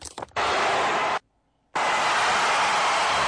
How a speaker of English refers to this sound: We don't need to hear the fucking cheering. Is it New Year's? It is. Yeah, it's New Year's near the middle of Times Square.